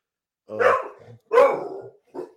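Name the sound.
dog barking excitedly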